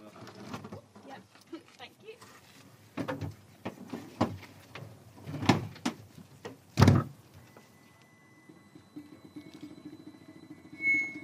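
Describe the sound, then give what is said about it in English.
A few sharp clunks and knocks, then a thin, steady mechanical squeak and whine as a solar-powered car pulls away down a racetrack, fairly faint, with soft voices in the background. “the solar-powered car, Evolution, squeaked off down the racetrack, I found myself scrabbling to describe it.”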